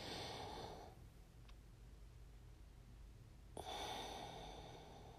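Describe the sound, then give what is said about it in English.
A deep breath: a long airy exhale trails off, then after a few seconds of near silence a sharp, rushing inhale starts abruptly and fades. No one speaks. “Like, take a breath, breathe it in.”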